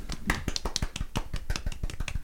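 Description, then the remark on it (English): A soft golf clap: light, quick hand claps in an uneven patter, about a dozen crisp taps at a gentle level for a couple of seconds, with no talking over them. “Let's give him a golf clap.”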